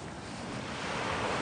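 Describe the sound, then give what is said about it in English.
Steady rush of ocean surf breaking on a beach, a broad continuous hiss that swells slightly louder toward the end, with some wind noise on the microphone and no voices. “I'm not leaving you. I'm just going into the ocean.”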